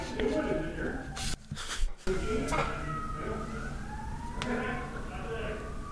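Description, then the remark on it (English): A fire truck siren wails steadily outside, its tone slowly rising and falling, while several people talk loudly in a hallway, their voices overlapping on top of it. “Okay, it's just people talking really loudly in the hallway at the same time as the fire truck's going, and it sounded like a really loud doorbell, which we don't have.”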